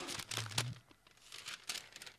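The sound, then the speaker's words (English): A piece of paper being handled, crinkling and rustling in uneven bursts, with a brief louder crumple early on and softer rustles trailing after. “Here's the piece of paper.”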